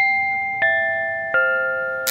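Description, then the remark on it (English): A doorbell at the Kazam residence is rung and chimes three bright, ringing tones in quick succession, each note lingering and overlapping, followed by a short burst of harsh, crackling noise as the bell gives an electric shock. “I rang the doorbell”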